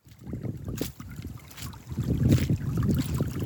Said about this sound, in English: We headed into the Chugach Mountains outside of Anchorage and checked out some of the receding glaciers and new ecosystems that are popping up around them. So the water you hear in the background is actually the glacier we're standing on melting.